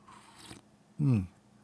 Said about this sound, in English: After a sip of coffee, drinking the last of the Waffle House coffee that I had on hand. Good stuff.